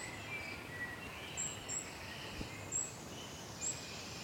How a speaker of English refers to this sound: There's a wood warbler in here. Thought there might be.